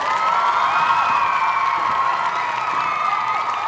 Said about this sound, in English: One more round of applause for my duet partner and the love of my life